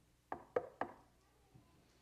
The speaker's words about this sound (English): Jesus will come knocking on our coffin lids.